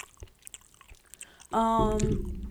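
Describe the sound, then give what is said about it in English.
Soft, wet chewing clicks right up against the microphone for a second or so, followed by a sudden loud, sustained voiced sound that swamps them. “I'm chewing like right into the mic on the stotone. Yeah, mad ASMR.”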